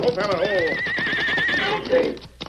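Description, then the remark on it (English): A riderless horse running away down a trail whinnies loudly in long, quavering neighs, while rapid hoofbeats clatter underneath and a brief final snort or clop ends the sequence. “That horse is running away. He's headed this way.”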